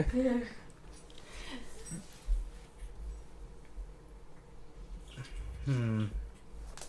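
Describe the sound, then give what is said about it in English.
Soft, wet squelching as a small gummy rubber Tyrannosaurus head toy is squeezed, irregular squishes and faint drip-like clicks running throughout, with a voice briefly speaking over it. “Is that what's making the noise? I was like, man, what is that, like, water?”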